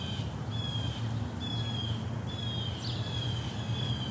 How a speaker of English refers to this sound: When I walk around my neighborhood, I turn on my phone, and this app listens to my surroundings. It uses AI to identify the birds singing near me.